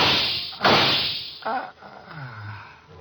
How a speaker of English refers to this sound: Somebody shooting from that window.